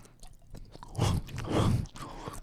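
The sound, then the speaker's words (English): Loud, wet chewing of crunchy food, with repeated crunches and mouth smacking in uneven bursts, two heavier bites standing out near the middle, and no talking. “Yeah, dude, the breathing is like even more worse than the smacking.”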